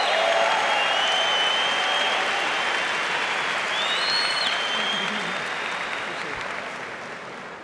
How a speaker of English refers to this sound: We must give him a standing ovation. He doesn't give a fuck. Stand up and clap up.